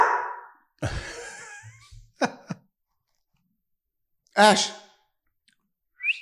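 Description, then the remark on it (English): A female dog shuffles and clicks about, letting out a couple of short, high whines separated by quiet pauses, with a brief rustle near the end. “Come say hi. Good girl. Okay, hey, puppy.”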